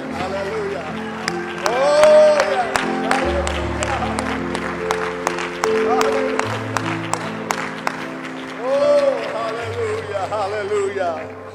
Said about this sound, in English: Let's clap our hands up.